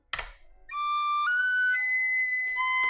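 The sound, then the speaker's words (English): A penny whistle plays a few sustained, breathy notes, stepping between pitches after a short puff of breath at the start, with no voices present. “Here's a penny whistle, yeah.”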